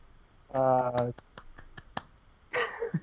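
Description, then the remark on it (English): A brief, sparse round of clapping, about six sharp claps at an uneven pace, set between short bursts of voice before and after. “Mild applause.”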